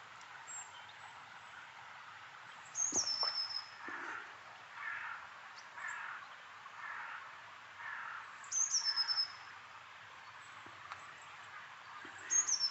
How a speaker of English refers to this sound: I stopped to have a cup of tea, and now I'm surrounded by a little a flock of blue tits and a few grey tits.